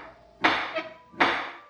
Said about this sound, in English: Affixed to the center of the front door was an iron ring. I lifted it and let it fall against a metal plate.